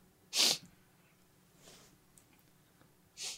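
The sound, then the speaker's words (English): A sharp, loud sneeze bursts out, followed by a fainter sneezy exhale and then a second strong sneeze, each short and explosive, with no talking. “Bless you, and let's move on.”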